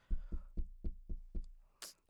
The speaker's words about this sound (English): Someone is really knocking.